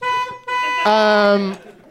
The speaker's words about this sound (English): Hit the car horn.